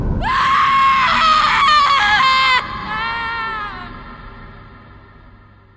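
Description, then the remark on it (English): A loud, shrill human scream of terror rings out in the darkness, sustained for a couple of seconds before breaking into a quieter, wavering second wail that fades away. “I screamed.”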